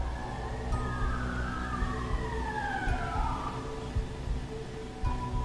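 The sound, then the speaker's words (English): A wailing police siren sweeps up and down in pitch somewhere outside, over a steady low rumble of background noise, with no talking. “Is that a police siren or a home alarm?”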